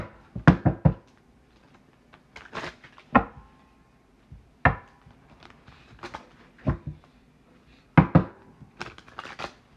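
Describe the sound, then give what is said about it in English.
Tarot cards being shuffled for a Sagittarius reading, a series of crisp, irregular slaps and riffling bursts separated by short quiet gaps, with no one speaking. “Just shuffling the cards.”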